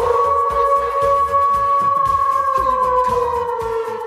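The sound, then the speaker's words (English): A dog in a studio lets out a long, sustained howl that slowly sinks in pitch, loud, holding steady for several seconds with no talking over it. “A little bit of the howling.”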